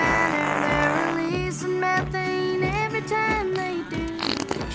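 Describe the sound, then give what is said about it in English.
A cartoonish cow-fart sound effect blares over a bouncy, tuneful jingle sung by a kid in a Burger King advert about cow methane emissions, loud, with sustained musical tones running steadily underneath. “So Burger King got this fucking kid to sing about cow farts?”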